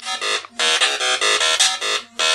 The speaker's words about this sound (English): And there's my phone going off. Sorry about that. I'll leave that in though, just again to prove that I have an Atari 8-bit connection here. Give you bonus points if you recognize that song.